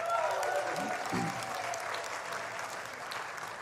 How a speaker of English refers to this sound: Give him a cheer.